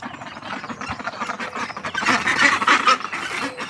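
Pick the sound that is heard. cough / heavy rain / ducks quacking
ducks quacking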